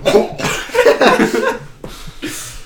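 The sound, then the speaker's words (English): A person imitates a hard coughing fit: a rapid string of harsh, raspy bursts, loud, with a brief pause before two final coughs. “Coughed like a mother effer, dude. I coughed so hard.”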